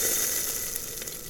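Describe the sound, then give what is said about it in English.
Meat sizzles on grills at a cannibal picnic, a steady, bright hiss with fine crackles and a few sharper pops, continuous and fairly soft, with no voices. “Had he not been heavily armed, Rodrigo knew he would have ended up spitting and hissing on the grills as well.”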